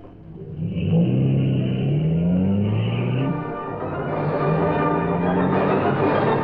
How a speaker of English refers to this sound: That man who come from house? Yes, it's Dryden. He's walking to that parked car. He's starting.